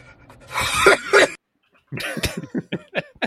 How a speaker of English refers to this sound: Still can't get rid of that lingering cough.